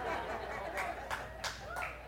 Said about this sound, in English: Amen. Whoever's clapping knows it. That's right.